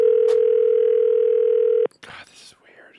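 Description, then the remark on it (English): A loud, steady telephone dial tone hums unbroken for almost two seconds as someone starts calling phone numbers from a list, then cuts off abruptly, followed by a brief burst of voice and clatter. “And so I made a list of all those phone numbers, and I was like, I'm just going to start calling.”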